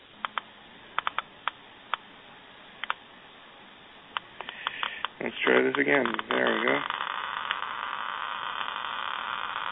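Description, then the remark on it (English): Sharp, irregular clicks of a Geiger counter tick over faint static, measuring normal background radiation; then a man speaks briefly as a paper towel is brought up to the counter, and the clicking thickens into a dense, hissing crackle. “Then he brings the paper towel up to the Geiger counter.”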